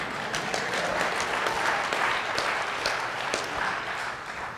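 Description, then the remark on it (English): A crowd breaks into steady applause for a speaker's answer, many hands clapping in a dense, even wash that holds at the same loudness for several seconds with no voices over it. “That one person wanted to clap for that answer.”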